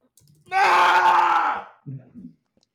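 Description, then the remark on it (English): One loud, drawn-out sneeze with a strong voiced, almost wailing tone lasts about a second, then a couple of brief, quiet vocal sounds follow. “Bless you.”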